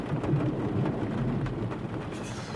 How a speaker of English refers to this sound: The storm!